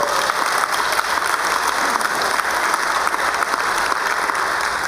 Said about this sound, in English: I take that warm applause as a vote of confidence, that I got one more year at least, that I could hang on.